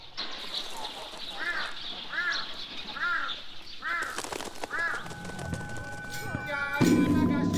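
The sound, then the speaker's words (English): A crow caws about five times in a steady, evenly spaced series over a hum of outdoor background noise that later picks up with clattering and a faint ringing tone. “我们都知道这个有些地方这个乌鸦就特别多，在北京有聚集地，它不是一个偶然现象。”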